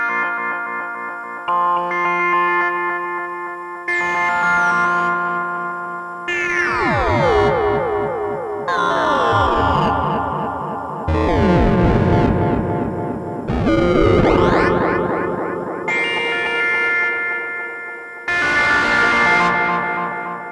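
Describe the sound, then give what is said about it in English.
A harsh, buzzy synthesizer crunched by a Harvestmen Malgorithm bit crusher and wave shaper, then patched into a Dreadbox echo effect that smears each phrase; bursts of gritty, pitch-sweeping tones start and stop in uneven blocks, loud, with no talking. “That's a bit crusher and wave shaper, as I mentioned earlier. And after the Malgorithm, I patched it into the echo effect of Dreadbox, and I'll just play a little bit with it.”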